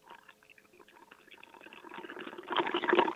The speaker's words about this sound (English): Did you hear that? Was that the clinking of the cubes? What was that? That was the clinking of a gin and tonic. Well, sitting on the flying bridge, just so you know.